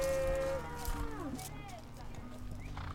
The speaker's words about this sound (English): And they're laughing and singing, and their cowgirl hats are jaunty, their faces smiling, as their sturdy horses scoot down the steep sagebrush hillside